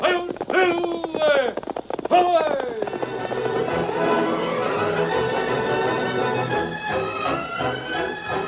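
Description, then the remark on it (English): The Lone Ranger's horse Silver whinnies loudly, then a fast, steady rush of galloping hoofbeats thunders on, loud, blended with a dense wash of background sound. “From out of the past come the thundering hoofbeats of the great horse Silver.”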